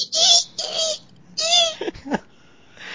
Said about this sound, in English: It's a flashcard app for my kid, right? And he loves the monkey noise.